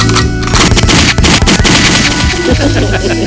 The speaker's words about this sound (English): Gunshots on the R&B.